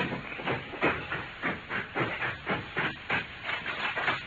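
A viper snake hisses in a steady run of about eight sharp, breathy bursts, each a rush of airy noise repeating roughly twice a second. There is no talking.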